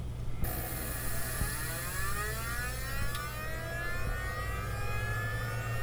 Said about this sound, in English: Like I had an old Mac computer that you'll hear is the Tiger's navigation computer warming up.